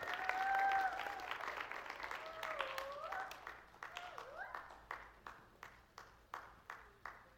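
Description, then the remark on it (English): An audience at a church service breaks into loud, dense applause for Miss Jane, who is called up for an announcement, with a few whoops and cheers on top. The clapping then gradually thins out into scattered, individual claps fading toward the end. “So please give a round of applause for Miss Jane.”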